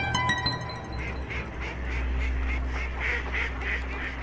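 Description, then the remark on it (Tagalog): A flock of ducks quacking at night beneath a house, in a rapid, repeated chorus, overlapping calls coming in quick bursts over a low steady rumble, moderately loud, with no talking. “Kinabukasan, nung muling sumapit ang gabi, ay ang mga pato naman namin ang nag-ingay sa silong.”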